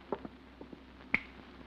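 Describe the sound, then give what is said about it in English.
A light switch by the front door at 1214A Euclid Avenue clicks sharply once, preceded by a few softer taps and fumbling clicks; otherwise quiet, with no voices. “Now, there's that light switch.”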